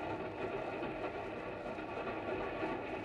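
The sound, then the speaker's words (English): A westbound passenger train rumbles steadily along the rails, a continuous, moderately loud mechanical drone with a faint rhythmic rattle and no voices. “looked at each other from opposite seats of a westbound train.”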